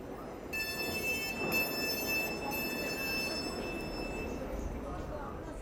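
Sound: train travelling on rails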